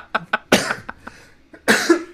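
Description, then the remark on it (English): A fit of harsh coughing from a person still coughing out dust early in the morning: a couple of short hacks, then a heavy burst and a few smaller ones, and after a brief pause another strong, raspy cough. “I'm still coughing out dust.”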